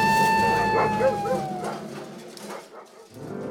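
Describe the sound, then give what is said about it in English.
Several golden retrievers getting off their leashes at a mall yelp and bark excitedly, starting with a high drawn-out whine and then a quick run of yips, over a busy background with some voices. “My dogs! They're getting off leash!”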